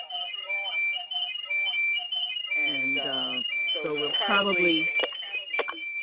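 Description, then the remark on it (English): A phone alarm or ringtone sounds steadily, a high, thin electronic tone pulsing in a repeating beep pattern throughout, while voices talk over it midway. “So we'll probably see if it was my phone.”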